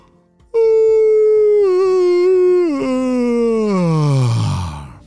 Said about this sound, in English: That was the yawn of a spring peeper. And this one's name is Paulio. Have you ever heard of a spring peeper before? Well, you might have heard them before. They're very loud little tree frogs. Very small frogs. About the size as your thumbnail.